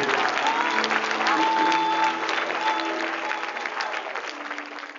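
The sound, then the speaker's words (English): A church audience applauds to give God a hand, a dense wash of clapping that stays loud for a couple of seconds before gradually tapering off, with a few faint voices mixed in. “Come on, church, give God a hand of applause.”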